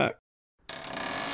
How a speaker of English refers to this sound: And he stepped in, and the door shut behind him.